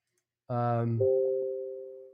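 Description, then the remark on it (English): A telephone rings once with an electronic tone: a brief buzzy burst that shifts into a steadier held pitch and slowly fades. The ring is clear, with no talking. “Oh, no. I hear it ringing in.”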